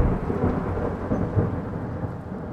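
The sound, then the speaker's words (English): A deep, sustained rumble of thunder rolls on without a break, heavy in the low end and fairly loud, like a storm grumbling. Nobody speaks. “And but with each step he takes, a thunder is heard, but only in heaven.”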